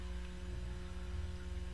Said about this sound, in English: 5 and 6. 5 and 6 is that. Remember? Because it makes a hum. You'll notice a difference.